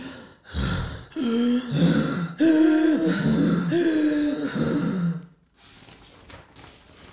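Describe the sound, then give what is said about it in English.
Heavy, loud breathing in a pitch-black art room after the lights went out: a series of drawn-out, voiced gasps and sighing breaths in a steady rhythm, ending with softer, airy breaths. “And all I could hear was heavy breathing.”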